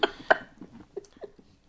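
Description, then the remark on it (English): Someone chokes after swallowing a piece of ice while laughing, with two sharp, forceful coughing bursts followed by a string of short, strained gasps and sputters that fade over a couple of seconds. “I swallowed a piece of ice and nearly died choking and laughing at the same time.”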